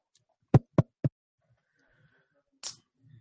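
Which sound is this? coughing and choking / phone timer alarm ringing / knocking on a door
knocking on a door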